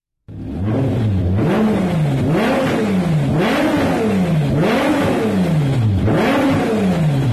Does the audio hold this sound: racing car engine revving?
yes